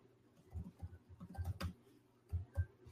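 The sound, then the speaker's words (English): Irregular bursts of typing on a computer keyboard as someone looks up on Qualcomm's website which modem is in the 750G chip, quick keystrokes clattering at a moderate level, with a short pause before a few final taps. No one speaks. “I hate my typing sucks.”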